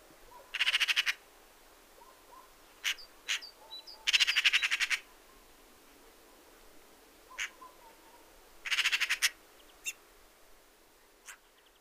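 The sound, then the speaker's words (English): Harsh, rattling magpie chatter in three loud bursts, each a rapid string of grating notes, separated by a few sharper single calls; no speech, against a quiet outdoor background. “Their harsh, repeated chattering, kaka kaka, call is unmistakable and could be commonly heard as a pair of magpies move through a garden.”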